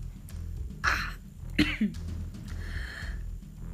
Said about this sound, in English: Bless me, sorry, I'm really battling with catarrh cough.